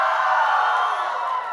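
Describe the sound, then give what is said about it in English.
A crowd at a camp cheers and screams in a sustained, loud roar of many high-pitched voices, holding steady before easing slightly at the end. “All you have to do is say one thing, they scream for you.”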